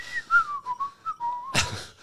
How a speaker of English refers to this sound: he's whistling a … song